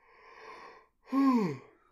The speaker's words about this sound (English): I keep yawning. We are recording this very late at night.